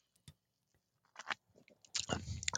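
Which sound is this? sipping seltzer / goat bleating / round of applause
sipping seltzer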